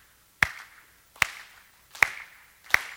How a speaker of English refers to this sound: I'm going to get you a little bit of kinetic activity here for a moment. I want you to clap with me.